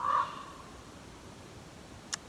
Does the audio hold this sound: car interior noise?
no